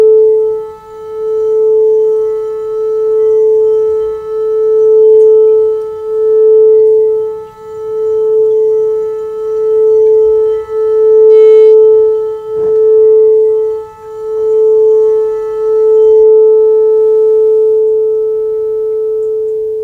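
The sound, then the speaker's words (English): A steady, pure sine-like tone at pitch A, the brow chakra tone used for sound healing, holds one pitch for the full twenty seconds, loud and unbroken, with a faint soft rumble beneath and a brief click midway. No voices. “This is the brow chakra tone, A.”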